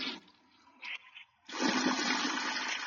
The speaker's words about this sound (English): I flushed the toilet on him.